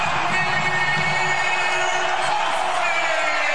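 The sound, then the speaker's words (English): A basketball arena crowd at a Minnesota Gophers game cheers loudly and steadily as it comes to its feet after a dunk puts the Gophers up 68-54: a dense roar of voices with whoops and shouts rising out of it, sustained at full volume for the whole stretch. “Crowd comes to its feet.”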